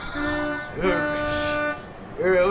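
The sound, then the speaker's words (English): A voice imitates a car horn honking during a traffic near miss in fog, with three loud blasts: a steady tone, a longer one that bends upward at the start, then a final rising honk. “So you guys head through the fog and traffic, and there's another near miss.”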